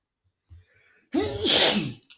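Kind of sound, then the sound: human body sound, sneeze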